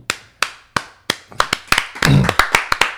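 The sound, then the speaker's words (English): Sharp hand claps ring out alone, starting slow and evenly spaced, then quickening into a faster, denser run of a dozen or so crisp slaps, with a brief low thump midway through. “Let's clap it up. I want to do a clap.”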